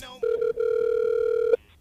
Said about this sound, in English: We got a quickly little phone call here coming in right off the top here. Ready for this one?